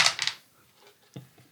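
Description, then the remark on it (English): Dice clatter across a hard tabletop, rolled for fire damage: a quick burst of three sharp clicks, then quiet, then one last knock as they settle. “And so that's double my dice roll, yeah?”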